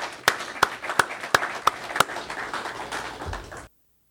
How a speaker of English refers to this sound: It's with the Stewards Network, so I think you guys deserve a round of applause. I really appreciate it.